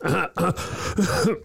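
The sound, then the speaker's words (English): A few rough, throaty coughs in close succession, loud, sounding partly like someone clearing their throat, with no talking over them. “You bad cough there.”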